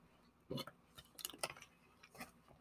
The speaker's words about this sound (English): I'm just gonna take a sip of my water and then we're gonna dive in.